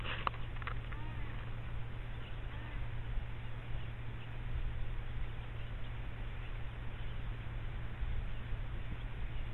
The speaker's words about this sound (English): it must have been a steady stream of several kilometers of birds. Just whooshing past.